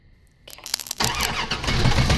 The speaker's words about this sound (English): It's a solenoid starter, right? What are you doing? I'm hotwiring Dad's car.